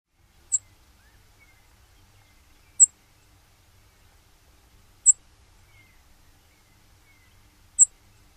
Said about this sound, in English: One more time, call notes of the Brewer Sparrow.